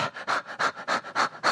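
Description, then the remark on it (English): A person imitates a small dog panting when hot: quick, breathy huffs in a steady rapid rhythm, about five in a second and a half, fairly loud with no other sounds. “I've got a little dog, and when she gets hot, that tongue drops out.”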